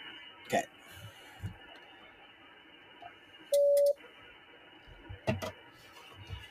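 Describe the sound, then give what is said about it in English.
A shortwave ham radio receiver tuned to 7.230 hisses with steady, muffled static, broken by a few sharp clicks and one brief, loud steady tone partway through. “So 7.230. Nate's gonna make this look slick.”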